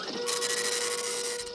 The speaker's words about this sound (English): Computer, go ahead and print out that list for me, please. Roger, here you are. I sent it to printer 37.